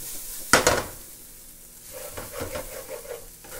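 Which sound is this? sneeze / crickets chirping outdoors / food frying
food frying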